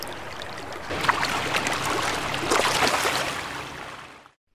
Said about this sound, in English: We are here along the banks of the Indian River. The riverbed is rocky and the water moves swiftly.